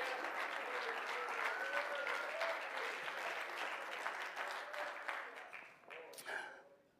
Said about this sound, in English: Oh, let's clap our hands and praise Him together tonight.